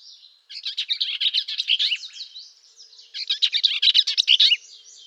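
A Bell's Vireo sings two quick, squeaky, chattering phrases separated by a short pause, bright with no other sounds around them.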